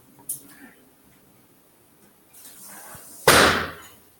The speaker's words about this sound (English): Hey, let me shut my door. Keep hearing traffic noise outside.